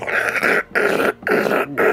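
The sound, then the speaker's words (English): Heavy, harsh screeching of a large ratchet being turned atop the uppermost platform of an observatory chamber, shifting the mechanism slightly, coming in about four loud, rasping bursts separated by brief pauses, with a coarse, growl-like grinding texture. “He gets underneath and does some tweaks, shifts over and grabs and turns a large ratchet. You see it kind of shift a little bit with this heavy kind of screeching.”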